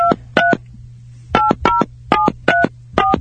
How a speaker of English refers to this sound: If anyone can read touch tones, you just knew how to dial his number.